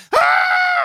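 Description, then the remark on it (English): A person's voice imitates a bull elk's mating bugle: one loud yell that jumps up into a high, steady squeal, holds for most of a second, then slides down and stops. “So then the lady elks are like, oh my God, his yell sounds hot.”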